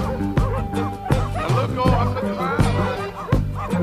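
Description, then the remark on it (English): A dog, called a red dog or Indian dog, barks repeatedly in short, irregular bursts, loud, over a steady background of murmuring voices. “Honey, that's one of them dogs you call a red dog.”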